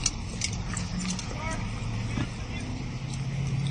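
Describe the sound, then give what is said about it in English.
A steady low rumble of car engines idling and creeping forward as cars roll up to a checkpoint, with faint indistinct voices murmuring in the background throughout. “Dude, they're still rolling up.”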